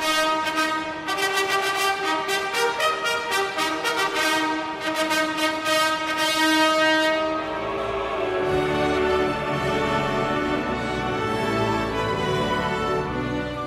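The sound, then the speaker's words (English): A loud, bright trumpet fanfare announcing the King's arrival at Westminster Abbey for his coronation ceremony: quick repeated brassy notes in rhythmic bursts for several seconds, then broad sustained chords ringing out, with no voices over it. “Trumpets announce the King's arrival at Westminster Abbey.”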